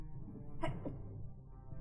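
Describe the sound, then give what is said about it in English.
A single quick sneeze bursts out, short, over a low steady background hum, then it goes quiet again. “Bless you. Bless you.”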